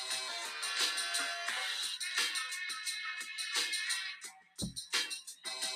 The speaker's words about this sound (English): Drop an old school beat. What y'all know about that?